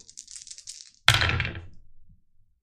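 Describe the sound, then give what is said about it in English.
Dice for a tabletop role-playing game rattle in a hand for about a second, then land with a sharp clatter on a table and tumble briefly before settling into quiet, rolling a 4 and a 10 on the challenge dice. No one speaks. “So you roll plus wits.”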